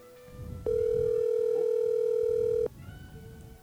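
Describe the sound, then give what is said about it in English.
A hotline telephone call rings through speakers once: a single loud, steady electronic tone holds for about two seconds, then cuts off, with only a low background rumble before and after. “I hear it ringing. It does appear to be ringing.”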